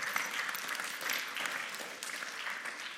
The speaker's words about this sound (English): A round of applause.